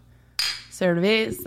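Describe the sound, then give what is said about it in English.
Two bottles of Modelo beer clink together in a toast, a bright glassy knock followed by a brief ringing, voice-like tone that bends in pitch before fading. “We are drinking a couple of Modelo Cervezas, by the way. Cheers.”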